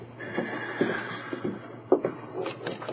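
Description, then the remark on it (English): A door is opened by a man carrying a heavy book, with a thin, drawn-out creak followed by a few soft knocks and clunks from the latch and frame, fairly quiet against a low background hum. “He took a heavy book from a table and opened the door.”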